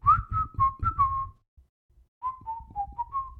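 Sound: person whistling a tune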